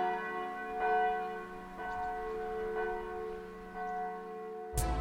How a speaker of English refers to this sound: and under it, the couple embraced as the church bells tolled noon.